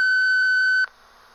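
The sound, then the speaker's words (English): A single loud, steady answering machine beep lasting under a second, then an abrupt cut to faint background hiss as the message begins. “Those phone messages are all real.”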